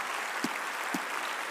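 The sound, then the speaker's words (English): A crowd applauds to welcome everyone present, a steady, dense wash of clapping at moderate loudness, with two soft, low thumps about half a second apart and no voices. “And so would everybody else, just with your applause, say welcome to all of you who are here, wherever you are in the spiritual spectrum?”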